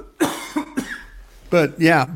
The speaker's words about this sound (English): Excuse me, I'm going to cough here for a second.